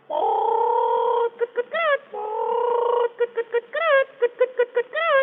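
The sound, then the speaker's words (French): A person vocally imitates a hen laying eggs, with two long drawn-out cackles followed by rapid bursts of short clucks and rising squawks, fairly loud with no other sounds. “Là, une poule qui pond des œufs pour faire des omelettes au lard.”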